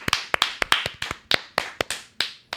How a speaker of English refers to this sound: And I want to project. I want to get a round of applause.